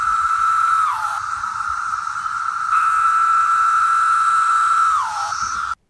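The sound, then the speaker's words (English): A loud, unbroken drone of buzzing cicadas holds a steady high pitch, sliding briefly downward twice before resuming, with no voices over it. “Depending on how close these things are to you or where you're trying to sleep, their buzzing can hit upwards of 120 decibels, which is comparable to a concert, revving motors, or power tools like chainsaws”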